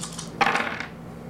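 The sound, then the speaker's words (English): A pool of seven dice clatters onto a hard surface with a sharp rattle that quickly tumbles to a stop, with no talking. “So roll me a presence plus your expression plus however many dots your striking looks are.”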